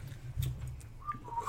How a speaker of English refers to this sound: Scruff, however, was a master whistler.